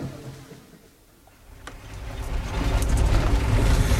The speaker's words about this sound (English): God knows what this taxi is going to cost.